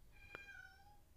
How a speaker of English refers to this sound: My cats are in the back. In fact, there's a good one because this cat that you can hear right now was originally called Satsuki after a character from Totoro.